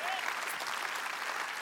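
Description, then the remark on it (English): An audience claps steadily throughout after the declaration that Jesus is the King of Kings, a dense, even wash of applause at a constant moderate loudness, with no voices standing out. “Yeah, that's worthy of a clap, I reckon.”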